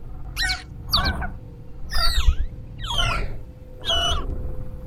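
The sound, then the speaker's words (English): A deep, gravelly creature, a green dragon, chirps five times in an even rhythm, each rasping call rising and falling over a low rumbling background, fairly loud with no talking. “It subsides, and you hear a deep, gravelly chirp.”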